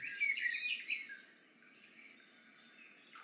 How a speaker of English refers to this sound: You have forest sounds. I don't know how much you can hear through this. You can layer them as well.